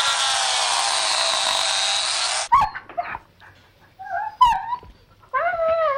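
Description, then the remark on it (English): A loud, steady electric buzz like clippers runs for a couple of seconds as a puppy's hair is sheared off, then cuts out, and the puppy follows with high, wavering whimpers and short rising howls. “Are you even allowed to take those out of their cages? That puppy.”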